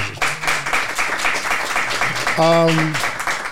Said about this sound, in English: So let me, first off, we can clap that up.